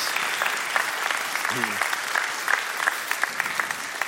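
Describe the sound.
An audience applauds the prayer team steadily for about four seconds, a dense, even wash of many hands clapping, with a brief voice rising faintly over it midway.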